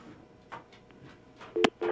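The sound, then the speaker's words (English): A phone line tone on the WTBR Sports Talk radio call-in line after a caller hangs up: a click, then steady electronic beeps in short repeated bursts, fairly loud, following a quiet stretch with no talking. “Oh, somebody hung up.”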